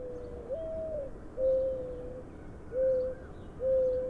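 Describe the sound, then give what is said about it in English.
Soft, hollow cooing notes from mourning doves in late winter repeat in a slow, steady pattern, each low call drawn out and mournful, over a quiet background hush. “Morning doves. I hadn't heard them in so long I had forgotten to expect them in late winter.”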